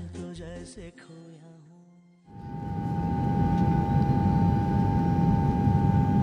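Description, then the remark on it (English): A brief musical phrase gives way to the steady, loud drone of an airplane cabin: a dense low engine rumble with a thin sustained whine running unbroken to the end. “On the plane, drinking a quarter bottle of white, I retrieved my address book from my crocodile bag, tore out a page at a time, and turned each one into a snowflake with a few painless tears.”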